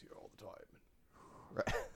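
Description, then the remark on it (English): A voice imitates Darth Vader's heavy mask breathing in a comedy sketch where Vader is called into HR: slow, raspy inhales and exhales, with a harsher, louder breath near the end. No words are spoken. “Are you getting huffy with me? Are you breathing hard?”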